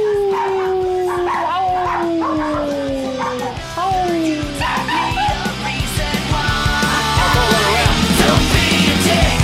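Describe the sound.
Dogs howl in long, drawn-out, slowly falling notes, loud, then break into shorter yips and barks amid background clatter and murmuring voices.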